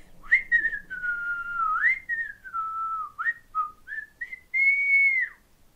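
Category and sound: human body sound, person whistling a tune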